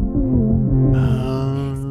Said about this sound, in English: Doesn't it sound like that ambulance sound? I mean, I heard it as a drum beat. It is this like amalgamation of ambulance or police siren plus heartbeat.